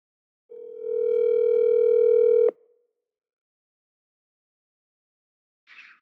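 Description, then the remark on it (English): A steady telephone dial tone hums for about two seconds as a phone call is placed, then cuts off abruptly; after a pause of silence, a brief higher-pitched chirp sounds near the end. “So I guess we got to get him on the phone We're just going right to it today.”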